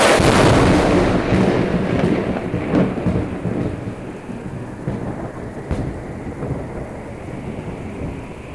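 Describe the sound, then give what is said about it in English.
A heavy rumble of thunder rolls in loud, with sharp crackling bursts early on, then slowly fades into a lingering low rumble over steady storm noise. No one speaks. “I don't know what just happened, but the storm seems to be over.”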